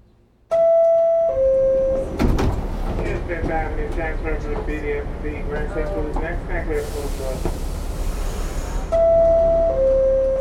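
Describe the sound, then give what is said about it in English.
On a subway ride home from work, a subway car's two-tone door chime sounds at the start and again at the end, framing a steady rumble of rail noise, a loud hissing burst of the doors, and muffled passenger chatter. “And then I took that material and cut it into sort of a fractured monologue about riding the subway home from work.”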